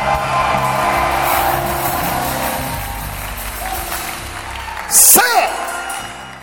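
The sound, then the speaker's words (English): A large audience claps and shouts together in celebration of a victory, a loud, sustained wash of noise, voices rising over the clapping, with one sharp cry bursting out near the end. “Come on, scream it as you clap.”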